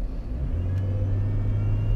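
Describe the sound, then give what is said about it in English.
A Trailblazer SUV engine drones loud from inside the moving vehicle, its low hum climbing briefly in pitch as it accelerates, then holding steady. No one speaks. “Oh, this Trailblazer eats up gas.”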